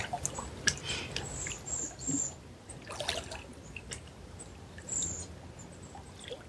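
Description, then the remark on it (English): Water flows and trickles steadily, a soft continuous wash with small splashy bursts, while faint high chirps flicker now and then above it. “The sound current of the water be yours.”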